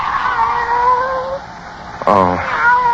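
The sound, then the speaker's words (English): A single fairly loud meow from Kitty, a pet cat, rises and falls about two-thirds of the way through, set against a steady, humming tonal drone that runs throughout. “Oh, it's you, Kitty. Barbara's pet.”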